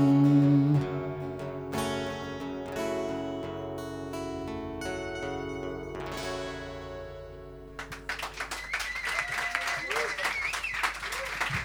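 A sustained musical chord rings out and fades, then a live audience at a pre-release party at Volume in Florence, Italy, breaks into dense, steady applause of many hands clapping for the last few seconds, welcoming the band.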